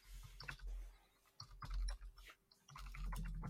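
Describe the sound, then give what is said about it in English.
Soft, irregular clatter of computer keyboard typing as someone looks up a number, quick bursts of clicks with brief pauses between them, over a low steady rumble; no one speaks. “Sorry, you're going to hear my keyboard while I look it up.”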